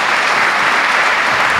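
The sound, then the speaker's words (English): Steady audience applause fills the moment, a dense, even patter of many hands clapping at once, loud and sustained without pause and with no voices over it. “Yes, let's give them a round of applause.”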